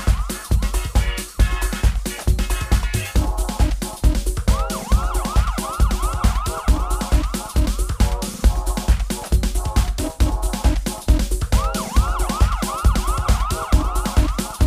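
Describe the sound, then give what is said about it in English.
Repeated rising-and-falling siren wails ring out over a fast, pounding hard house dance beat, coming in bursts of several swoops at a steady, loud level. “Can you hear the sirens? They're getting closer.”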